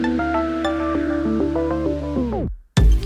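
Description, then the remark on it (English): A steady synthesizer sine-wave tone, produced electronically by one of the synthesizer's oscillators, steps through a short run of sustained notes, then glides downward and cuts off; after a brief silence a loud new sound starts abruptly. “This is a sine wave.”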